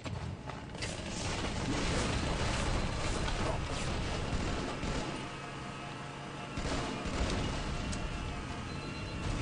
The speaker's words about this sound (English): The Warthog sounds like a remote control car.